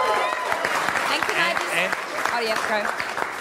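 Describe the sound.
A round of applause: dense, steady clapping that fills the whole stretch at a loud, even level, with a few voices calling out over the top.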